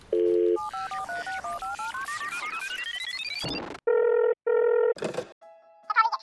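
telephone dialing tones

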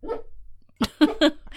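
dog barking

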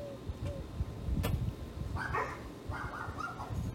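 dog barking and whimpering

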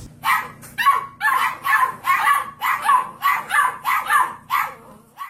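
puppy barking and yipping

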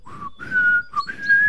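person whistling a tune

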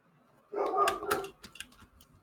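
dog barking

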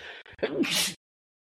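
sneeze

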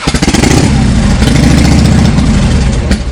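motorcycle engine revving

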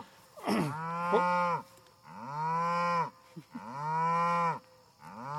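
cows mooing

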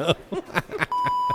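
censor beep

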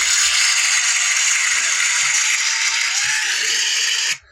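studio audience cheering

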